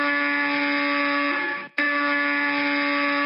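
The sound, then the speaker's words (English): A harsh electric apartment door buzzer, broken for more than 10 years, blares loudly and goes off repeatedly, one long continuous buzz that cuts out for a split second before starting again, with no voices. “The buzzer of Scrooge's door, the buzzer that had been broken for more than 10 years, suddenly began going off repeatedly.”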